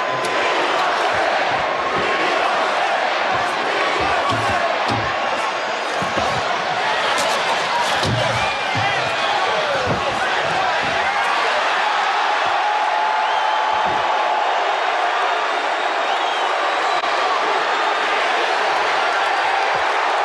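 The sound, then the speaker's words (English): A packed arena crowd chants and roars loudly and continuously, a dense wall of voices with scattered low thumps and shouts near the start. “The crowd's chanting, "We want Sting."”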